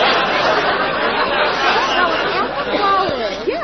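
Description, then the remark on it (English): Dense, steady babble of many overlapping voices fills a busy restaurant, with bits of laughter and rising tones poking through the constant crowd chatter. “there sure is a big crowd here.”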